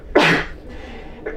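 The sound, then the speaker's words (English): A loud, sharp sneeze bursts out, followed about a second later by a much softer, briefer second sneeze. No one speaks. “Bless you twice.”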